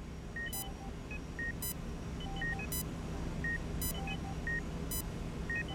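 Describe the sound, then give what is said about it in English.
A glucose monitor in a neonatal intensive care unit beeps for low and dropping glucose in a steady rhythm, roughly once a second, mixed with softer scattered electronic tones over a constant low mechanical hum. “Then the glucose monitor beeped, glucose low and dropping.”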